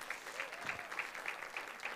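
A crowd applauds the speaker's in-laws in a steady round of clapping, dense and even throughout, with faint voices mixed underneath.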